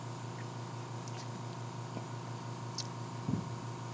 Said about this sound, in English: How long does it take? How long does the compressor run?